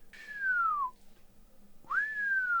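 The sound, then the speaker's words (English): A person whistles two notes imitating an unidentified bird's song: a long note that glides downward, a short pause, then a quick upward swoop that levels into a sustained, slowly falling tone. No talking. “That bird song I played you the other day, no one's answered, no one's replied. I can't find out what it is.”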